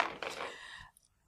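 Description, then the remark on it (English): A brief clatter of dice rolled for an appearance roll, tumbling across a surface, a dense rattle lasting under a second before it stops and fades into quiet. Fairly soft, with no talking. “I need some dice for that, don't I?”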